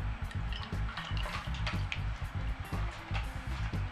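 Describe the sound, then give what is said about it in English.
Spring water from a package of tofu drains through a strainer, pouring and splattering steadily, with a continuous wet trickle and small drips throughout and no voices. “And tofu comes in a package like this, in spring water. And we have to get rid of the water before we can use the tofu.”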